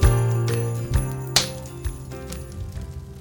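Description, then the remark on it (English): A bell jingles as the gang arrive at the Armchair Adventures HQ, ringing out with a few bright metallic strikes, each leaving a shimmering decay that fades over about three seconds, with no voices. “And with a jingle of a bell, the gang arrive in the dreary, very un-Christmassy Armchair Adventures HQ.”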